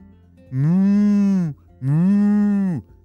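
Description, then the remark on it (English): A cow named Bessie moos twice from a barn, not yet milked that morning. Each call is a long, loud, steady low bellow of about a second, separated by a short pause, with no talking. “Arbor was walking very quickly to the barn, which is where that mooing was coming from.”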